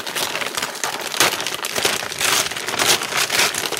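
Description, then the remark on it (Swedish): Very fine gift wrapping paper is torn open and crumpled to unwrap a new frying pan. A steady, bright crinkling and rustling with a few sharper ripping bursts, fairly loud, with no voices over it. “Det var otroligt fint presentpapper.”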